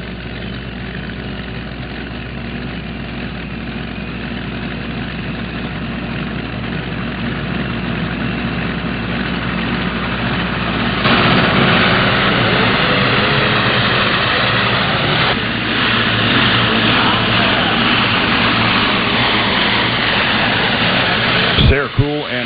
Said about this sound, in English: Here comes Sarah Cool out of Macedonia, Iowa. Hot Stuff, the name of her international tractor.